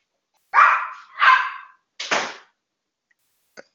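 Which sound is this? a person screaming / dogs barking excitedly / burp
dogs barking excitedly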